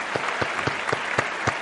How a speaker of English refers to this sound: Yes, that's right. Give him an applause.